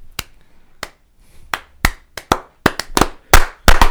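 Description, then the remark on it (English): Loud hand clapping in sharp, uneven claps that start sparse and grow quicker and denser toward the end, with no talking over them. “That's really loud. Whoever gets I clap that really part.”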